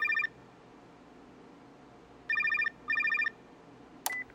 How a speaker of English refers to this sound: cell phone rings.